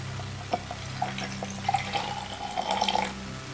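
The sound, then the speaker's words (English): Sudachi shochu is poured over broken-up ice cubes in a glass, a steady trickle broken by several sharp clinks of ice shifting, with a low hum underneath and no talking. “These ice cubes didn't come out so great. They're kind of broken up, but that'll do the trick. A little bit of Sudachi Shochu.”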